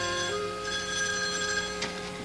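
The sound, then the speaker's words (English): An old-fashioned telephone bell rings loudly and continuously at Harmony Ranch with a call for Ranger Doug, its bright metallic jangle sustained throughout with a slight renewed burst near the end, and no voices. “At the famed old Harmony Ranch, Ranger Doug is about to get what heretofore would have been an impossible phone call.”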